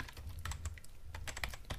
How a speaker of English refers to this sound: I begin typing on the keyboard in and enter the password to the old PC.